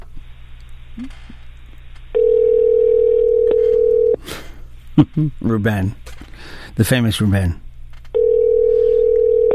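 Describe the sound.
An outgoing phone call rings: a steady electronic ringback tone sounds for about two seconds, pauses while a man speaks briefly, then starts again, clear.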